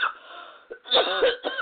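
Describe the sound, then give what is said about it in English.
A person coughs in a short, raspy fit: a brief rough exhale, then two or three harsh, throaty coughs in quick succession. “I'm having a bit of a coughing fit.”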